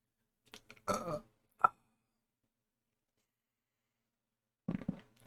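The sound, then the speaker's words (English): A person burps twice, fairly loud, with a short croaky belch followed by a sharp click, then a long silence before another rough burp near the end. “Keep fucking burping.”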